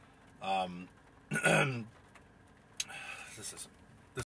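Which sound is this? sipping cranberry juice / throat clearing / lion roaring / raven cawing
throat clearing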